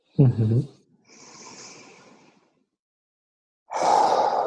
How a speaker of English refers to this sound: And actually, on this third complete breath, I am more forceful about it because I'm breathing in strength and I'm breathing out gratefulness for the strength.